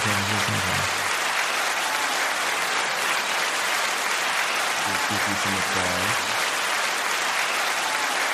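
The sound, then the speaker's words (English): Loud, steady applause for Keke Palmer fills the whole stretch, dense clapping from a crowd, with a couple of brief voices calling out over it near the start and again midway. “Let's give her some applause.”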